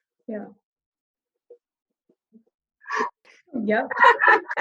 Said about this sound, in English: I just want to apologize. Our dog is making the weirdest noises tonight.